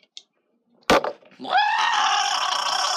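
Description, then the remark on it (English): A sharp crack, then a person who has just taken a drink of water lets out a loud, high, strained squeal that rises sharply and holds steady for over a second, like a weird dolphin sound. “Yeah, that was and it was kind of like a weird dolphin sound.”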